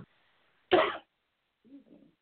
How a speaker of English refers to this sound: Sorry, y'all. It's like allergy season, so we're fighting back sneezes and coughs and all that good stuff.